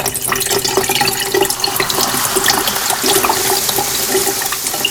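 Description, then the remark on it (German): Colourless, oily sulfuric acid pours steadily down a sink drain, a continuous splashing and gurgling rush of liquid that lasts throughout without pause, with no voices. “Ich gieße das Zeug lieber in den Ausguss.”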